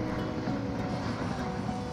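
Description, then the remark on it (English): A military helicopter coasts through the skies over Singapore, a steady, dense low drone with a broad wash of engine noise and pulsating blades that holds at an even, fairly loud level throughout. “the single sound that cuts right through the atmosphere is the rumbling of the military helicopters coasting through the skies”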